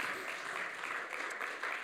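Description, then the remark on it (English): A crowd claps steadily for the actors after they enact a parable, a dense wash of many hands applauding at an even, sustained level throughout, with no clear voices standing out. “So why don't we just give our actors a round of applause and Caesar as well.”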